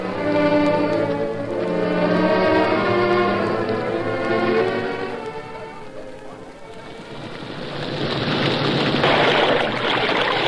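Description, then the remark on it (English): Logs tumbling and splashing into a creek, a loud, sustained churning rush of water that swells in the latter half, preceded by a steady humming, tonal drone. “Logs make quite a splash when they hit the creek, don't they?”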